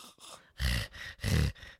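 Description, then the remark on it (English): A voice imitates heavy breathing: two loud, rasping breath bursts with low rumbling, separated by softer, airy breaths, in a slow in-and-out rhythm with no words. “My heavy breathing.”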